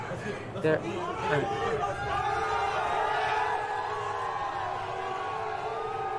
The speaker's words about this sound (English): They're all booing him. Do you listen? They're all booing him. They're booing him.